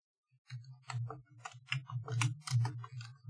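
computer keyboard typing

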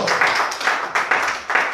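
audience hand clapping

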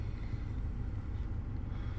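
car interior ambience

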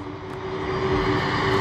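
airplane flying overhead

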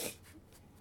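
sneeze

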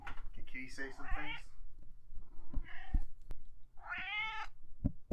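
cat meowing

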